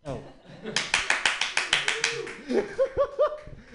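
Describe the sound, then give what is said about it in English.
An audience at a stand-up comedy show claps in a fast, steady rhythm to welcome the next comedian, about a dozen sharp, loud claps in a row, then the clapping fades as voices call out over it. “Your next comedian, keep your hands clapping, everybody.”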